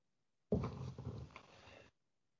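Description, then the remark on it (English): A cat lets out one drawn-out meow at the door, wanting to be let in, fairly loud at first, then fading over about a second and a half, with no talking around it. “Sorry, I was just letting my cat in because he was meowing at the door.”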